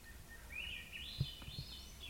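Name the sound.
swainson's thrush song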